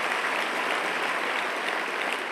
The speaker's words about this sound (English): So it is good you are in a clapping mood because I will encourage you to clap for them, to encourage them so that they feel God's affirmation this morning.